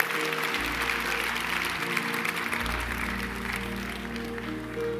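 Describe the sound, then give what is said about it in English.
An audience gives a hand clap of praise, applauding steadily for several seconds, a dense, even wash of clapping hands with a low hum sustained underneath and no talking over it. “Let's just give him a hand clap of praise.”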